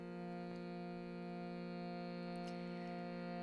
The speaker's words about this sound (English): So I'm playing an Indian instrument called a Shruti box. It's a drone instrument.